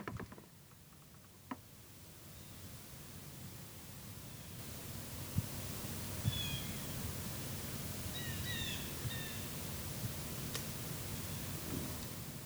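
Steady hissing woodland ambience in Ivy, Virginia, with a few short, high blue jay calls around the middle, scattered sharp taps of acorns falling, and soft crackling of dry leaves throughout.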